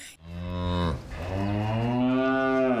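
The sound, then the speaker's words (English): Two long, drawn-out cow moos from a California dairy commercial follow one another, loud, each a sustained harmonic bellow that swells and slowly falls, with no talking. “It's happy cows.”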